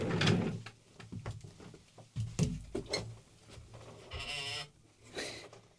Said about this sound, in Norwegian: Hvis man hører det, da bare sier vi, hvis dere hører noe knirking